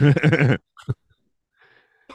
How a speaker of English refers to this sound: Excuse me, I've been, I turned my heater on and it's drying out my throat, so I've been coughing.